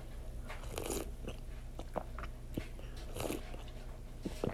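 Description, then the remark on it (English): Wet mouth noises of someone sipping hot cocoa with mini marshmallows and ice cream on top, several short slurps and swallows scattered over a few seconds against a quiet background hum, with no talking. “So you might hear me sipping some of that.”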